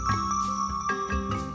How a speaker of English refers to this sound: Make sure to listen closely for the bell.